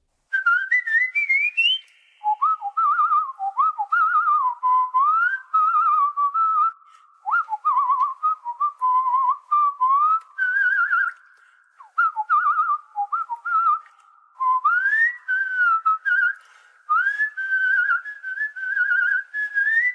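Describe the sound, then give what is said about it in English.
A lone person whistles a bright, lilting TV theme tune, clear, with added reverb, in flowing phrases separated by brief breaths, with quick sliding notes and no talking throughout. “tell me which theme tune … is a whistling”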